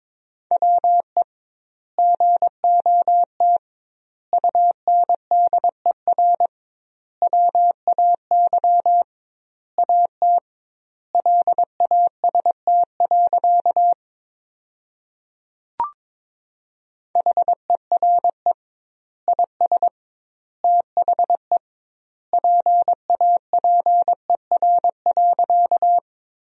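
A steady mid-pitched tone keys on and off in rapid dots and dashes, sending Morse code sentences built from the 300 most common words at about 22 words per minute, with double-width gaps between words and a brief click partway through.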